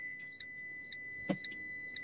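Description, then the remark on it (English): A van's seatbelt warning chime, set off by unbuckling the seatbelt while in drive, beeps steadily, about twice a second, with a high, piercing pitch over a constant background tone. A single sharp click sounds partway through. No one speaks. “You hear that sound? That beeping?”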